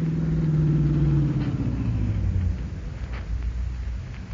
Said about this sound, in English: Here comes the bandit car. On your toes, huh?